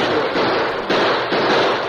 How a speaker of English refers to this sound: Both lawmen and outlaws fought from whatever cover could be found. But when the guns of a Lone Ranger and Tonto began to bark, Bolden and his men soon realized that the odds were against them.